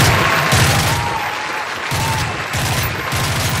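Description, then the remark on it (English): Dense crowd applause fills the air while rapid bursts of gunfire crackle through it, loud, with sharp repeated volleys pulsing over the continuous clapping. “Applause and gunshots should not really go together.”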